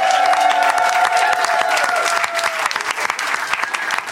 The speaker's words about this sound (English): Please give give a big round of applause for our expert bagpiper